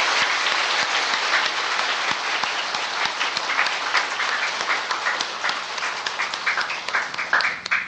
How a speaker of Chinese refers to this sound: 我们现在就以最热烈的掌声来恭请师父开示。